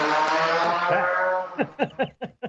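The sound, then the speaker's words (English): A loud car roars past, its engine a dense steady rumble that breaks into a series of rapid revving pulses as it pulls away. “that was a loud car.”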